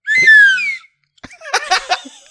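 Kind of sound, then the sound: sound effect, slide whistle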